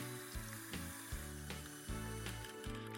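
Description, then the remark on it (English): Water runs steadily from a tap while hands are rinsed, a continuous hissing splash layered over music with a thumping bass line and regular beats. Nobody speaks. “Now, rinse your hands. Rinse them well. Turn off the water.”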